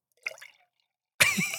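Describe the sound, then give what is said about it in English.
A drink is poured into an empty glass: a short, soft splashing sound, a pause, then a loud steady stream of liquid that starts abruptly and keeps gurgling to the end. No one speaks. “Yeah, I got an empty glass here.”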